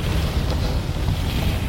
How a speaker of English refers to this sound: It's very alien. Very weird. Yeah, the ship makes crazy noises. There's always a storm. And that sound of as you going like really fast and low. Oh, it's really cool.